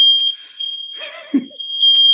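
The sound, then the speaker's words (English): A home smoke alarm shrills with a steady, piercing high-pitched tone that runs unbroken from start to finish, with a brief muffled rustle and low thump partway through. “And I think that the reason is that, oh, our fire alarm is going off.”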